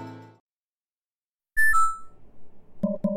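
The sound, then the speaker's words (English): A phone call disconnect beep: a loud, quick two-note electronic tone stepping down in pitch, followed by crackly line noise and two short, buzzy blips at the end. “Call disconnected.”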